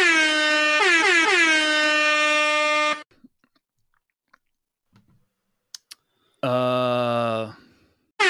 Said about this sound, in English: I'm going to put the longest air horn of all time after that.